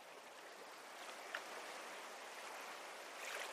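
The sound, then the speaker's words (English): Soft, steady water sounds of small ripples lapping at the shoreline of a turquoise bay, a gentle continuous wash with slight swells, quiet, with no voices. “But right here, there are just ripples washing toward the shore as you stand with your feet ankle deep in the warm water.”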